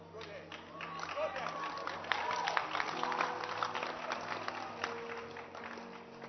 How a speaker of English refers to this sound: Clap your hands for him.